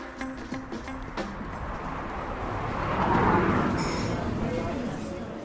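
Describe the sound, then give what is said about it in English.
The busy Hive, a craft beer coffee shop in Crowthorne, Berkshire, hums with a steady hiss of coffee machines steaming milk that swells in the middle, over a murmur of people chatting and light clinks of cups and teaspoons. “The sound around us is the purring of coffee machines steaming milk, the tinging of teaspoons, and the punctuated bubble of people chatting.”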